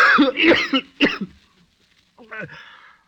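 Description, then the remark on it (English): A person coughs hard, a few rough bursts in quick succession, then after a brief pause a final hoarse, throaty cough. “Why does that blasted cough?”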